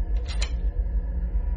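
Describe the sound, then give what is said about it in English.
A door lock turns with a quick pair of metallic clicks and a short rattle, then a steady low rumble carries on underneath with no talking. “Just to be safe, I locked the door.”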